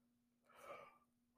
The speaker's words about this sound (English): Again, sorry for the yawns, guys. But I make the podcast when I can, even when it's late at night.